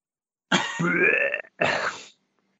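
Two loud, throaty coughs from a man: a longer rasping one followed quickly by a shorter burst, then silence. The coughs sound voiced and deliberate, with no talking around them.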